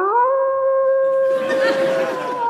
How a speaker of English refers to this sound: That will be a guest. We have a very distinctive doorbell that sounds like a wolf.